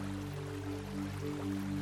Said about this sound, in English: Watch the gentle flow of a mature river meandering through a broad river valley and relax. Listen to the gentle burble of water, a balm for the soul.